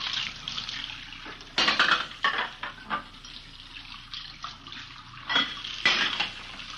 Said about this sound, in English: We found her in the kitchen washing dishes. I just got a couple more to rinse. Can you wait a minute?